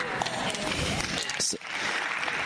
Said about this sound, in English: Amen. See, we got the whole house clapping this time.